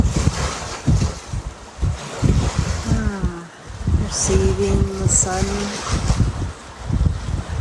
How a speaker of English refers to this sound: Receiving the energy of the waves. Receiving the song of the wind.